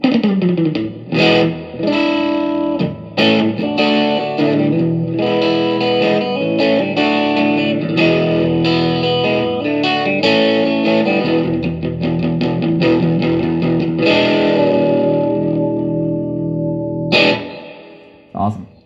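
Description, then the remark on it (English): An electric guitar plays a continuous run of strummed chords and ringing notes, drenched in reverb so each note blurs into the next, fairly loud for nearly twenty seconds. “Give it some reverb.”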